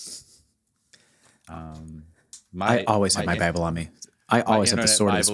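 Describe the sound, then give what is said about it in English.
A short papery rustle of the pages of a paper Bible being flipped, followed by a man's voice talking and drawing out sounds over the last few seconds. “Paper Bible for the win. Listen to that.”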